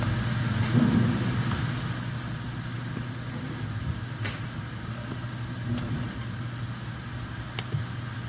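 A record player made of paper, playing quite slowly, gives a low, steady droning tone with a rough, scratchy texture, broken by a few faint clicks along the way. No one speaks over it.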